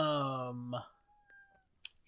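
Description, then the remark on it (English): A cat lets out one loud, drawn-out meow, ending abruptly; afterward it goes mostly quiet apart from a faint thin tone and a brief click. “Shut up, cat.”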